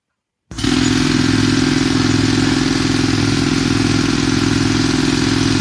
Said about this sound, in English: That's a jackhammer of some sort, or hammer drill. Yeah. There you go, man. Jackhammer. Jackhammer it is. Nice. Yes, sir. That is it. That is a jackhammer.